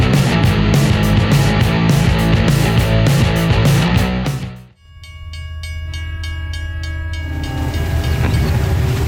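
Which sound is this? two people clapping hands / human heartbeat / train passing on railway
train passing on railway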